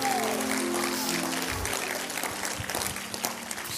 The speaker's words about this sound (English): If you believe that God is going to answer needs, God's going to heal, God's going to deliver, would you clap your hands and worship the Lord one more time?